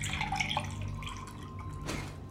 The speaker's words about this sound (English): Will you pour me some water, please? Of course, my queen.